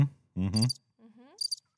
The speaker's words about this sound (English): Is that your spiritual cricket? I'm just tuning in to my crickets. Yeah. And I think you need to name the cricket. Yeah, that's Jiminy. Jiminy the cricket.